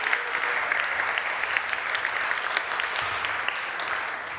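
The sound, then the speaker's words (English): A steady wash of audience applause, many hands clapping in a dense, continuous patter at an even loudness for several seconds, with no one speaking over it. “a round of applause back there.”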